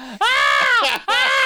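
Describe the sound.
A voice imitates a partner's noise during sex as a velociraptor-like screech: two loud, shrill, strained cries, the first long and sliding downward in pitch, followed by a shorter second burst.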